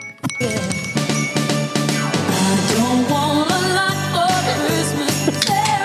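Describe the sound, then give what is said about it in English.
A hand bell rings over and over in a quick, steady rhythm, its bright metallic clang loud and unbroken for the whole stretch. “You're ringing it already.”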